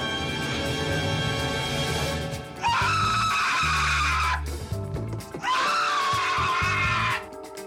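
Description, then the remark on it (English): A man screams loudly in two long, strained yells separated by a short gasp-like pause in a film scene involving a tarantula, rising out of a busy soundtrack with music and clatter underneath. “You knew the scream.”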